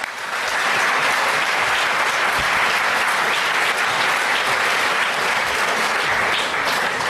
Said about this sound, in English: Okay, good, thank you. I think that deserves a round of applause.